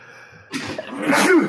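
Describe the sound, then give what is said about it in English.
A single loud sneeze from a person coming down with a cold bursts out after a brief quiet moment, with a sharp breathy onset followed by a forceful nasal expulsion. “Gesundheit.”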